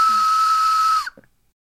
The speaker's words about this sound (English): And then it says train whistle sound. That's right.